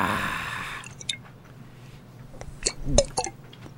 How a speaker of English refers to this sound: Oh, I guess you're right. Just gonna try a little sip.